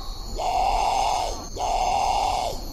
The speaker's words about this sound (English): So Potus are a group of birds, and there are multiple species. So we're going to listen to a couple different species. So this is the great Potu call.